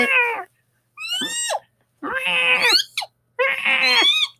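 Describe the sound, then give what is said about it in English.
A voice imitates a ghast's shriek with four loud, high, wavering cries, each a short baby-like wail separated by brief pauses, and no talking in between. “They're just shrieking.”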